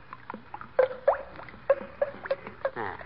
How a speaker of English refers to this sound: I go by the gloves. By the what? The gloves. You notice when you pour the paint out how it goes glub, glub, glub?